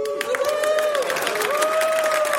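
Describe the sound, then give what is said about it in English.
A crowd at a stewardship celebration applauds the choir with steady, dense clapping that fills the whole moment, a faint sustained tone hanging underneath the claps. “Everybody else, please hold your applause.”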